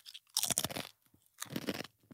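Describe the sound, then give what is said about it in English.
Crisp crunching of someone chewing for ASMR, in two loud bursts separated by a brief pause, with no talking. “People love that. Really? Listening to people chew.”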